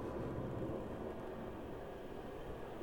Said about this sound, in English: Sorry, I was waiting for the helicopter to go by.